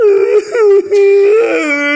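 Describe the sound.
A voice imitates a child's wailing cry, as the speaker would cry at the end of the block: a sustained, high, quavering tone broken twice by short gasps, loud and alone for about two seconds.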